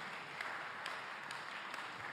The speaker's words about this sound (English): So I'm going to welcome up Clive. Can we give Clive a clap?